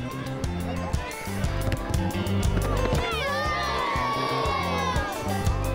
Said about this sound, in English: Day after school, the children play football. Their enthusiasm testifies to their deep love of the game.